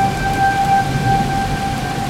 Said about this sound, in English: you can tell the storm is starting to move away. Yeah. But the sirens remain on. Yeah. Just like, you know, a little pocket where it isn't quite so intense. Yeah. And the noise has gone down to the point where you can hear the thunder again.